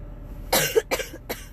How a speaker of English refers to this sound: Sorry for my weird cough